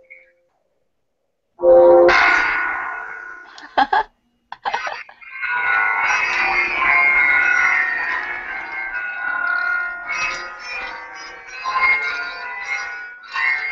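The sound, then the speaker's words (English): A loud, dense cluster of ten electronic bell tones strikes together, ringing out in a shimmering, sustained wash with a few sharper hits, then lingering and fading unevenly. “Now this is going to be a little bit dramatic, so you get to play some bells, 10 bells together, and then you go to the next one.”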